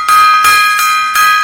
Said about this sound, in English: Five bell salute to Mr. ….